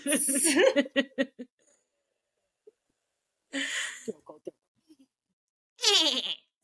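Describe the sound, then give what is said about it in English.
A person imitates a goat's bleat with their voice, three loud, wavering cries separated by pauses, with a few short breathy vocal sounds in between. “Throat goats.”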